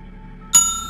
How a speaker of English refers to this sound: The bell at the front desk rang.